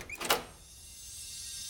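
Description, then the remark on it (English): A door into a shiny new trivia room opens with a quick, bright mechanical whoosh, then fades into a soft, high, shimmering hiss that lingers. No one speaks. “I never noticed this door before.”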